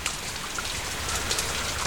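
Steady rain from a storm pours down, a dense, even hiss of countless drops pattering on a surface with scattered brighter taps, continuous and unbroken throughout, with no voices.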